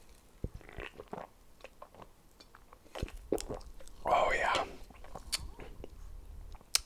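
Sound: sipping a drink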